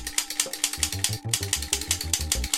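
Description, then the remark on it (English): A toy zapper gun, a video game peripheral, fires a steady, rapid run of buzzy pulses, about five per second, each with a crackly high edge and a low stepping electronic tone, with no voices. “All guns should make that sound. They shouldn't go bang. Give zappers to the Norwegian soldiers.”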